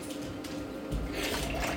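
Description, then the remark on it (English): Vodka pours steadily into a glass, filling it past three quarters of a cup, a continuous splashing stream that grows slightly fuller and louder toward the end, with no voices. “Alright, I probably shouldn't be pouring anymore.”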